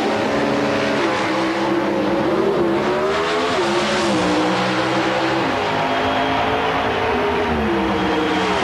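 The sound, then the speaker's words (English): Loud, roaring Pro Stock drag race cars scream at full throttle at the U.S. Nationals, Bob Glidden's car winning by a car length in 7.37 seconds; their pitch slides and wavers as they accelerate hard, a dense, continuous mechanical blare with no voices. “Bob Glidden, by just a car length, goes into his 12th consecutive final round appearance at the U.S. Nationals.”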